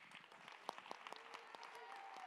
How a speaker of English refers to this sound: Okay, now that we're standing, let's clap our hands to give him praise.